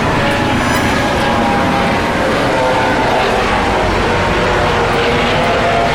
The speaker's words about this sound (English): You getting a helicopter?